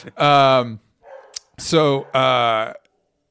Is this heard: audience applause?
no